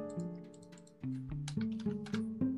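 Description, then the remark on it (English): Quick, light computer keyboard clicks patter in an irregular run as someone types the same word over and over, over a steady droning tone that shifts pitch in steps. “It helps when you're just typing the same word over and over.”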